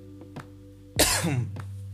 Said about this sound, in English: Oh my god, I'm so sorry, I'm coughing, and you have to hear this. I don't know what it is, like, just, there is some sort of a rasp in my throat that just annoys me. But yeah, I probably shouldn't be recording myself coughing.